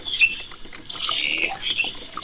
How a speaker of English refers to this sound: Yeah. Good. You can hear the metal grinding on the metal at that squeaky bit.